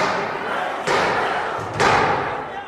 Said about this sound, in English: And then there was a sound I will never forget, the sound of pounding on the door like a battering.